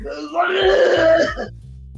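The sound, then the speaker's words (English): A man coughs and clears his throat in one rough, drawn-out rasp lasting about a second, fairly loud, followed by quiet. “Well, the way he's coughing, he might have already shit his pants.”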